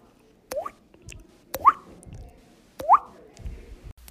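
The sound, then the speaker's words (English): Three wet, hollow plinks spaced about a second apart, each a quick rising tone with a tap at its start, made by a person whistling while tapping their cheek to imitate dripping water. “To create this unique sound effect, I simply took my own mouth, I whistled, and then I tapped on the side of my cheek at the same time. It's very effective in creating a water noise.”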